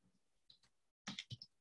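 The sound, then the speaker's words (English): A few soft computer keyboard keystrokes, then a brief pause and a quicker, louder flurry of typing clicks, with no voices. “This is me failing to use a keyboard.”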